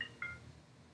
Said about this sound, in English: Uh-oh. I think we got our first phone call. Oh, no. Okay, let's take the call in.